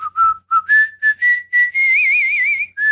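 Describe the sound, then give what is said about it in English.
A person whistles a short melodic tune, clear and loud, with several quick separate notes followed by a longer wavering note and a final rising one. “Whistling is one of my skills.”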